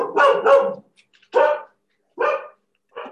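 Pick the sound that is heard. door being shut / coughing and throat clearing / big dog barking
big dog barking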